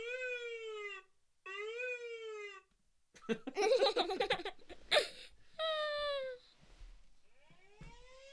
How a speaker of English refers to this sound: Oh, there it is! Ambulance siren.